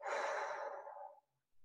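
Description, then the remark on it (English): A single long, breathy exhale after a deep breath in, loud at first and gradually thinning out over about a second before dropping into silence. No talking. “And as my daughter said, she must have learned this in school, you smell the flower and blow out the candles.”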